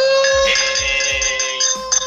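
Drinking glasses clink as people drink, with a bright, bell-like ring that sustains and slowly fades, with a few soft low thumps and a second light tap near the end.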